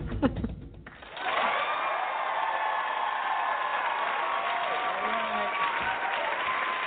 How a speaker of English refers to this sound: Thunderous applause.